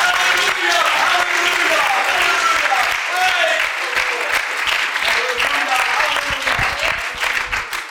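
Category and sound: crowd, audience clapping hands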